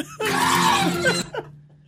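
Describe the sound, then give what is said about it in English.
A woman lets out a shrill, horror-film scream, loud and sustained for about a second, then breaks off into a short, strained cry that quickly fades. “It sounds like someone getting murdered.”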